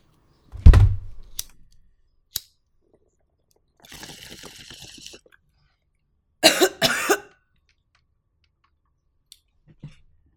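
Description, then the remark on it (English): Two harsh, sputtering coughs from someone choking on water, following a dull thump, a few clicks and a rough, breathy hiss. No one speaks. “I actually choked on water there.”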